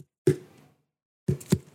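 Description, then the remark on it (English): Light knocks on a watermelon held in the hands, to tell whether it is ripe: a single hollow, low-pitched thump with a short ringing decay, a pause, then two quicker knocks in succession, with no talking. “Most of us have learned that the way to tell if a melon is ripe, hold it in your hands and give the surface a light knock.”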